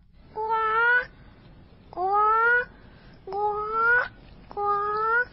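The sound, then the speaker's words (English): A child's voice imitates a bird with four loud, squawking calls, each rising in pitch and lasting under a second, evenly spaced with short pauses, clear with no talking. “Can you make a bird sound”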